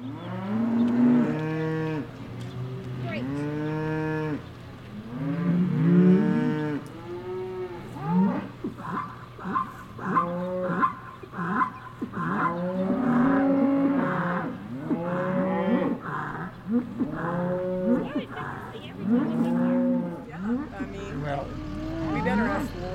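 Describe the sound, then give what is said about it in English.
Several young cows that had jumped a fence moo repeatedly on a cattle ranch in Fremont, their calls overlapping in a loud, steady chorus with rising and falling tones, in a field. “In Fremont, cattle ranchers were dealing with a few young cows that had jumped a fence.”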